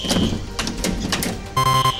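An electronic door lock gives a single steady, mid-pitched beep lasting under half a second, after a run of dry mechanical clicks and rattles like a handle being tried.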